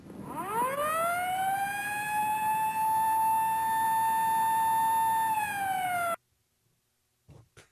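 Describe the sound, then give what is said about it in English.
A loud British, European-style emergency vehicle siren swells up to a steady, piercing tone, holds it for several seconds, then slides down and cuts off abruptly, leaving near silence and a couple of faint clicks. “Maybe this is better. That's British, isn't it? That's Europe.”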